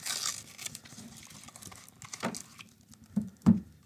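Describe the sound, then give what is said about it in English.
Crinkly tearing and crunching of a card deck box being ripped open to reach the bag of cards inside, with a hiss of crackle at the start, scattered rustles, then two sharper crunchy bursts near the end. No one speaks. “You're going to hear a little crunch. I'm just going to tear right into it.”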